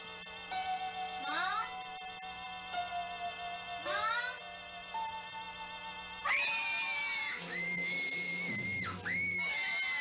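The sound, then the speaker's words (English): Shrill, wailing screams in a film scene rise over eerie, Hitchcock-style music, then a louder, sustained scream bursts in near the end, loud and drawn out, with no talking. “Type screaming.”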